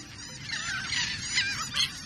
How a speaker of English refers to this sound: We're hearing the calls of royal terns. The birds we call terns look like sporty versions of gulls. Like gulls, most terns are feathered gray and white, but terns are more streamlined, with slender pointed wings and spike-like bills.